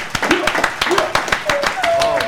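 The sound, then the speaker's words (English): Rapid, steady hand clapping, a show host giving himself an extra long clap during the intro of the 85 South Show, sharp and fairly loud, about five or six claps a second, with faint wordless vocal sounds underneath. “I give myself an extra long clap because it's extra long.”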